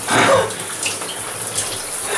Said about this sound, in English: I might be not explaining that well, but in fairness, I am currently being doused with freezing cold water.